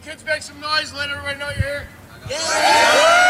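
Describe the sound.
A group of high school kids, asked to make some noise, yells and cheers, starting with scattered voices and building into a loud, sustained burst of whooping and shouting that fills the last second.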